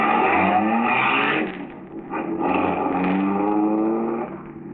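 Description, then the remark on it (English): A car engine roars, its pitch climbing as it drives up a highway at night, easing briefly, then surging loudly again as the car passes a man walking along the road. No voices. “Walking along the highway, Albion hears the first one come up and pass him.”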